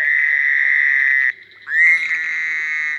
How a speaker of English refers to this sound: In June, expect to hear in Brown County, bullfrogs would probably be most conspicuous. And then there are green frogs, as well as Cope's gray tree frogs, cricket frogs. They sound like little castanets, little clicking noises, and Fowler's toads.